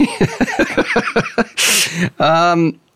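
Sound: sneeze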